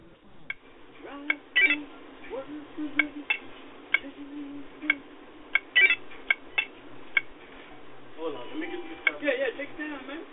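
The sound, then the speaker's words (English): A run of short, irregular electronic beeps and clicks from a video game, heard through a thin telephone line, with a faint murmur of sound underneath near the end. “Sir, please, put down your video games and come back to the phone.”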